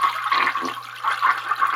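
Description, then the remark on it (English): A toilet flushes with a steady rush of swirling water, fairly loud, lasting a couple of seconds with no voices over it. “We've got to flush away the losers, and the winners go on.”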